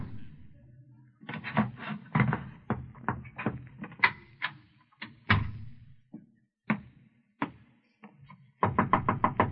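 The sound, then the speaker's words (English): Knocking on a door, fairly loud, coming in uneven bursts of quick raps with a few single knocks between, ending in a fast flurry. “Who is it? It's me. The door's unlocked.”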